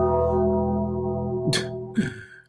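bell ringing sound effect

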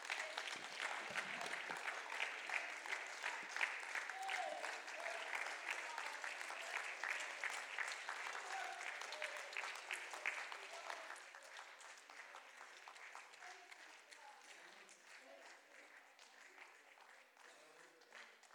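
audience applauding

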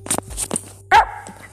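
dog barking

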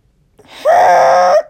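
man groaning

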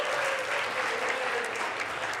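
audience round of applause

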